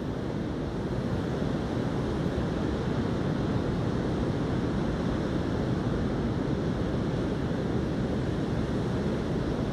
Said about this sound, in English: As you listen to the ocean, as this meditation draws to an end, focus on the rhythm of the waves. They roll like thunder. They share their energy freely.